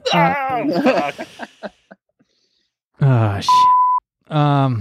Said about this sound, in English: I do have to go through and beep out all the swear words, but yeah, you can definitely fuck.